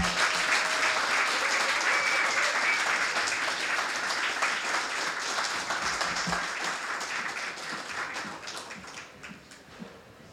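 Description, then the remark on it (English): A crowd in Chicago applauds to welcome a guest onto the stage for a talk, with dense, steady clapping that holds for several seconds, then slowly thins and fades toward the end. “Let's clap it up.”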